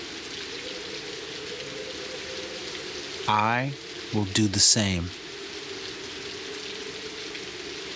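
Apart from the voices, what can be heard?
falling rain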